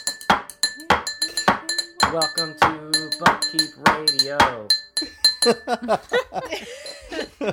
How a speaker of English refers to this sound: Clinks ice in the glass.